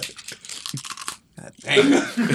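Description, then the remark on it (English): A brittle crackle and crunch of a fortune cookie snapping apart, with a burst of crinkly tearing first and then louder, dense crunching chews near the end. “Fortune cookie first.”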